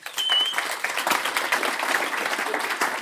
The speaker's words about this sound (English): Well, thank you, audience. Give yourselves a round of applause.